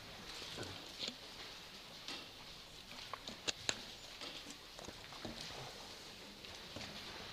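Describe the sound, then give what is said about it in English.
Quiet, continuous papery rustling of Bible pages being turned as people look up Isaiah 46, broken by a few sharper flicks and crinkles over several seconds, with no one speaking. “We'll wait for, I hear those pages turning.”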